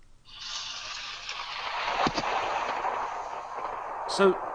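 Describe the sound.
A voice imitates a flushing toilet: a long, breathy rushing hiss that swells in and holds steady for about four seconds, broken by a brief click midway and a short gurgling burst near the end.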